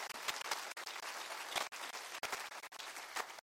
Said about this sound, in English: Would you clap your hands and rejoice for that in the name of the Lord?